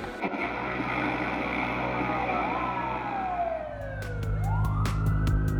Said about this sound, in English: Fire trucks sat on either end of the complex, diesel engines chortling.